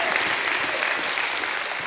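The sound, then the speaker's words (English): A church audience claps in praise of God during a service, a steady, dense wash of applause, loud and sustained across the whole moment with no clear gaps between hands. “In Jesus' name, before you're seated, one more time, give him a hand clap and a shout of praise.”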